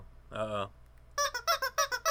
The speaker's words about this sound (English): He's got his damn chickens. They've made it onto the podcast.